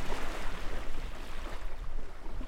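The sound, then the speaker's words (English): Steady wash of water and surf noise with a constant low rumble of a small boat grinding up onto a shoreline as waves break, no voices. The boat is landing on the coastal plain of a wildlife refuge. “tells us to hop out while he secures the boat.”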